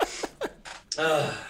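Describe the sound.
A few quick, sharp breaths lead into a single loud, explosive sneeze, its sudden burst trailing off into a voiced, drawn-out tail.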